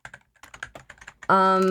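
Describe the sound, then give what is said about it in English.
Rapid, irregular clacking of computer keys as a person deliberately types very loudly, a burst of a dozen or so strikes before a person's voice cuts in strongly at the very end. “is typing. Yes, very loudly, intentionally.”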